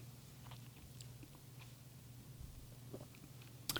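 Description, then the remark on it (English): Quiet chewing with irregular soft crunches and bites, set against a steady low hum, with a sharper click near the end. “Chew.”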